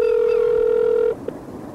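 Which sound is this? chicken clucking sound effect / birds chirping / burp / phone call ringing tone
phone call ringing tone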